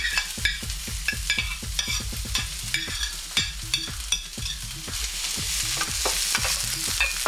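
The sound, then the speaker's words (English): Vegetables sizzle steadily in vegetable oil in a frying pan heated to medium-high, with repeated scraping and tapping as a utensil stirs them; fairly loud, no voices. “And I'm going to saute my vegetables first. Cover the frying pan with the oil. Add the vegetables.”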